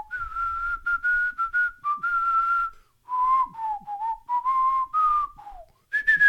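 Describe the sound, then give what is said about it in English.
A person whistles a short melodic tune, clear pure notes in a bouncy phrase with brief pauses, imitating the ocarina theme tune from the recap of a TV serial that aired in America in 1977; no talking. “They had a recap at the start of each one with Frankie and Lil Bill walking down the street, with Frankie playing an ocarina and the tune that went, I'll try and whistle it.”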